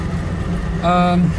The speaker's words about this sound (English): I'm still holding the gas pedal on because if I let go... It will go out, yeah. Yeah, the engine will turn full shutdown, probably.